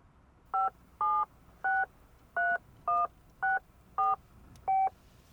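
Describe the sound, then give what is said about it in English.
A cell phone number being dialed in a car: eight short, evenly spaced keypad tones beep in quick succession, clear, with no voices. “Dial, woman.”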